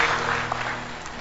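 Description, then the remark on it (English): An audience applauds steadily, a dense wash of many hands clapping at an even level throughout the short moment, with a faint low hum underneath and no voices. “Clap for them. Oh, show them love.”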